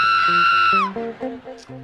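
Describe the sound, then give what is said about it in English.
A voice imitates a mourner's piercing scream at a funeral, a high sustained wail lasting under a second that drops off sharply, followed by lower voice sounds underneath. “You ever been at a funeral and heard that one little scream?”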